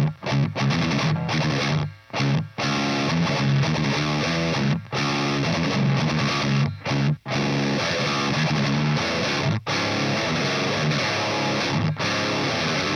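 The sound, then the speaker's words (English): A loud, fizzy distorted electric guitar, recorded with an on-axis microphone, plays a dense, chugging riff, its harsh buzzy top end constant, broken by a few brief stops between phrases. No one speaks. “I'm going to play you this. Here is the on-axis microphone.”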